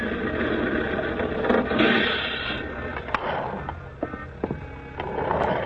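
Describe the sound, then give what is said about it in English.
A bus pulls up and opens its doors: a steady, rushing engine rumble, followed by several sharp clanks and mechanical clicks in the second half, with no talking. “Ah, here comes my bus.”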